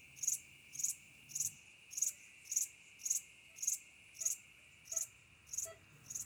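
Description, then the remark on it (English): Crickets chirp on a summer night in a steady, evenly spaced rhythm, about eleven bright high-pitched pulses over a faint continuous insect hum, with no voices. “the sound of a summer night. Where does it take you?”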